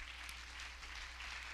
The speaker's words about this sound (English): So clap your hands unto the Lord.